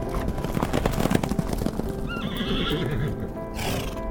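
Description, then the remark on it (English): Wild horses on a dry, dusty range in the Osoyoos Desert whinny loudly and repeatedly, their high wavering neighs rising over a steady rumble of hooves clopping on hard ground, continuous with no one speaking. “Wild horses wandering a dry and dusty range known as the Osoyoos Desert.”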